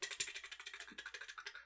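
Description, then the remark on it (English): Rapid, steady keyboard typing with crisp, evenly spaced clicks, moderately quiet, with no voices present. “I've seen you typing on two keyboards at the same time before.”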